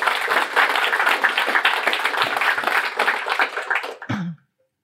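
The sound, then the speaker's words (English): A crowd applauds with dense, steady clapping for about four seconds, then the sound stops abruptly into silence. “Nice round of applause”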